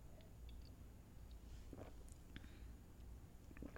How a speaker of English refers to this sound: So excuse me while I take a sip of tea.